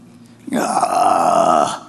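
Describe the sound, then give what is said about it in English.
A voice imitates a big fish belching a man up onto the shore: one long, loud, drawn-out belching sound lasting over a second, rough and throaty, with no talking around it. “So they throw him over, and then a big fish comes, swallows, undoubtedly a whale or something like that, comes and then belches him up on the shore.”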